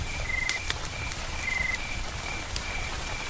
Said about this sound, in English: And now we've got to this. Rain's quite heavy. Just really nice.